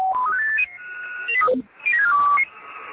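Radio tuning tones from a software-defined radio: loud, pure electronic tones stepping up in pitch, then sliding back down, twice over, with a steady hiss beneath and no talking.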